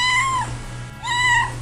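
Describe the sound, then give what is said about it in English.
A slow, pot-bellied cat meows twice in quick succession, each call drawn out and falling in pitch at the end, fairly loud over a steady low background hum. “Tubby was a slow, inflated-looking kind of a cat.”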